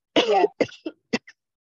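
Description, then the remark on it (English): A person has a coughing fit: one long rasping cough followed by several shorter, weaker coughs and a final throat-clearing rasp, fairly loud with no speech. “I have this coughing fit.”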